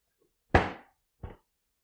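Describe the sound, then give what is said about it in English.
A woman's hand slams down hard on her desk in frustration, followed a moment later by a second, softer slam. Both are sharp thumps with a brief rattle, and no one speaks. “slamming on her desk in frustration.”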